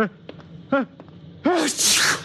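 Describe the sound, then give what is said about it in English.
A few short, catchy gasping breaths build up, then one loud sneeze from someone with a cold bursts out with a voiced start and a long hissing spray of air. “My eyes just water, my nose runs, and I sneeze because I'm essentially a masochist.”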